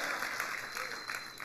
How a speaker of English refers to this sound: That's the kind of clap I like. Come on, somebody, thank God today.